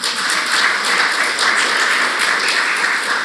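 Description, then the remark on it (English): A church audience in Hanford applauds its worship teams: steady, loud applause, a dense wash of many hands clapping at once with no single beat standing out, sustained throughout without any talking. “And so you can applaud for them if you like.”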